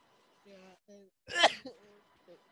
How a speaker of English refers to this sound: Yeah, and bless you.